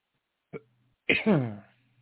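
A single sneeze: a short catch of breath, then a sharp, breathy burst that trails off into a voiced, falling tone. Fairly soft, with no talking around it.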